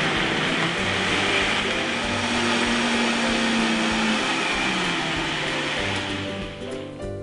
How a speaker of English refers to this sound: Put our blender cap on very nicely. A high speed blender will work well, but any kind of blender is fine. And turn it on.